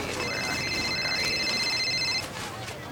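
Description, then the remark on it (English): A telephone gives off steady electronic tones for about two seconds, fairly clear over a busy background murmur, then cuts off abruptly. “Stupid phone.”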